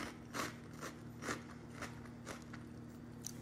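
Steady crunching of a dry dairy-free vegan white cheddar cheese snack being chewed, with about seven sharp crackly bites spaced roughly every half second over a faint low hum, no talking.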